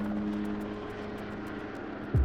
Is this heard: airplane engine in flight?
yes